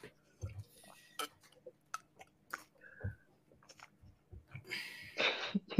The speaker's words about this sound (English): Sip.